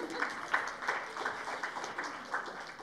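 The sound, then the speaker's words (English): A small audience at a Poetry Project poetry reading claps steadily for the two poets, a dense patter of overlapping hand claps at moderate volume with a few sharper claps standing out, no voices over it. “You can clap.”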